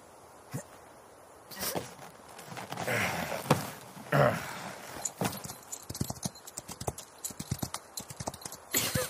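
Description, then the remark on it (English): Horses' hooves clip-clop in a quick, uneven rhythm of sharp knocks, fairly loud, with a few heavier thuds and scuffs mixed in and no one speaking. “We need to leave. On the horses, now.”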